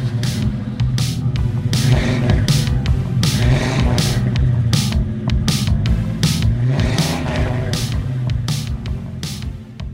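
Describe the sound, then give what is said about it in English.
A muscle car's deep, throaty engine rumbles loudly and revs in repeated surges, staying steady for the whole stretch with no voices. “and maybe, just maybe, a small rental car splurge too, because I might enjoy just a little more muscle car fun sometime soon.”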